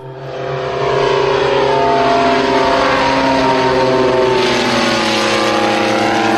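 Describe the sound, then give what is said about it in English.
The big piston engine of a vintage propeller airplane, the type first to fly nonstop across the Atlantic, runs loud and steady, its rough, throbbing drone swelling up in the first second and then holding a sustained growl with layered harmonic tones, with no talking. “first airplane to fly from England to Australia, and the first airplane to fly from England to South Africa. It does have a really interesting sound.”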